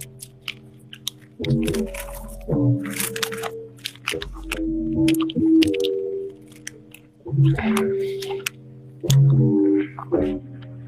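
Someone chews Skittles candy with wet, squishy mouth sounds in repeated bursts, a few crisp bites breaking through, loud and steady with short pauses between mouthfuls.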